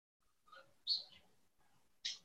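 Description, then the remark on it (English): A few short, high bird chirps ring out alone against a quiet background, spaced irregularly over a couple of seconds, soft. “Listen to the bird.”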